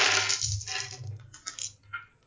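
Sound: three dice being rolled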